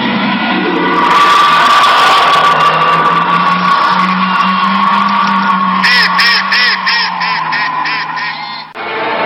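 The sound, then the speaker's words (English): A terrifying cry attributed to a Sasquatch-like creature reported around Falk, Arkansas, as featured in The Legend of Boggy Creek: one long, loud, sustained wail with a low droning pitch and harsh overtones, breaking into warbling pulses near the end before cutting off abruptly. “And that this creature, whatever it is, emits one of the most terrifying sounds ever recorded.”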